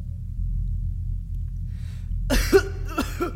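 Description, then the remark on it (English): A man lets out a few harsh coughs in two quick bursts near the end, after a stretch of steady low rumble, as he brings himself to his hands and knees. “coughed as he brought himself to his hands and knees in the room.”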